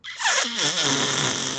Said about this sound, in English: You know, I really wish I could fart in my mic right now just to get your response back. So here, let me help you out with that.